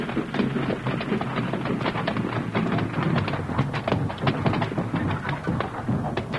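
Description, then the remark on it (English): Steady clopping of horses' hooves over a continuous low rumble of wagon wheels, a brisk irregular rhythm that stays fairly loud for the whole stretch, with no voices; the Lone Ranger's and Tonto's horses drawing Aaron's wagon to a narrow strip of land at the foot of a hill. “After the wagons had left, the Lone Ranger and Tonto hitched their horses to Aaron's wagon and drew it to land that looked undesirable.”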